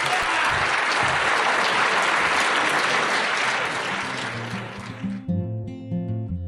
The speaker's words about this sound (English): Thank you so much, everyone, for coming tonight. And one more round of applause, please, for Nikky, Finney, and Lynn Hejinian.